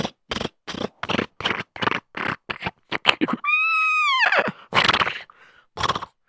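Rapid, evenly spaced hoofbeats of a horse galloping away with its rider, broken by a loud, high, wavering neigh, then a few final thuds. Clear, with no talking.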